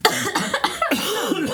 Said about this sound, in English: Time out for coughing.